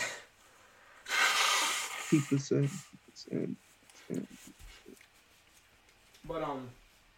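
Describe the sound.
Someone blows their nose once, a loud, rough, breathy burst lasting about a second, followed by scattered short vocal sounds and a brief voiced utterance near the end.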